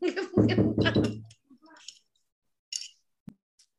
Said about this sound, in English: Why you got people banging on your door? Is it the feds? What the fuck is that? Hold up.